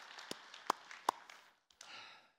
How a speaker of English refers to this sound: And I'd like for us to give a moment just to give God the glory. All right, let's applaud.